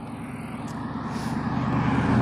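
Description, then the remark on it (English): A low engine rumble that steadily grows louder over a couple of seconds, like a car approaching and driving past, with no talking. “I got a car.”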